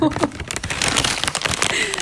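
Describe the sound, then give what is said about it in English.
Slips of paper rustle and crinkle as they're shaken inside a burrito packet, a foil-like wrapper, before one is drawn; a continuous crackling shuffle lasting a couple of seconds with voices murmuring underneath. “Obviously, it's not a fishbowl. They can hear the paper.”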